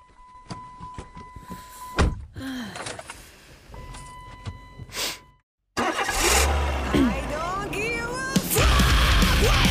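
Clicks, thunks and a steady electronic chime come first, then after a brief silence the speaker's own car engine cranks, catches and revs loudly and repeatedly, its pitch rising and falling.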